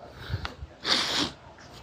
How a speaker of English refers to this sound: Pardon the sniffing, I apologize. But as I record this, I can't pause it at the moment.